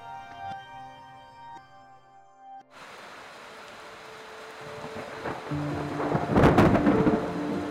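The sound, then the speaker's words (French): Soft tonal music gives way abruptly to a steady roar of heavy rain in the jungle, from an intense storm produced by a hurricane that had hit the state of Oaxaca; a loud, close crack and rumble of thunder swells near the end, with lightning striking a few metres from the cabins. “Tout comme cette partie du voyage avait commencé, elle s'est terminée par une tempête.”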